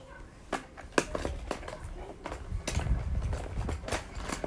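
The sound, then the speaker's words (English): Someone puts a bunch of pencils into a container one after another, a series of sharp wooden clicks at an irregular pace over a low background rumble. “Put a bunch of pencils in there.”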